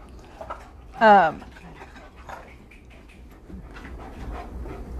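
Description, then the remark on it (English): A dog breathes heavily, with one brief loud whiny, wheezing huff about a second in, followed by quieter, steady breathing noise that continues to the end. “it's going to be just heavy breathing in this podcast.”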